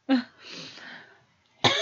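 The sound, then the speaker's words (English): Two sharp coughs, separated by a raspy, breathy stretch in between, like someone struggling to hold back a cough. No one speaks. “I'm trying not to cough.”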